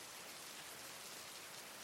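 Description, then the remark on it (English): Steady, soft hiss of light rain falling at twilight onto a cobbled street, an even wash of fine patter with no distinct drops standing out, quiet and continuous with no voices. “I'm sprawled in the road, my hands pressed against the cobblestones, the lamppost flickering faintly above me, and rain falling lightly through the twilight.”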